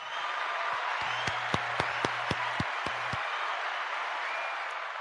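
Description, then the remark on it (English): Roughly nine crisp hand claps land in a quick, steady rhythm over a murmuring room, then stop, leaving only the background hubbub; the claps cheer on a city council candidate. “Give me some hand claps.”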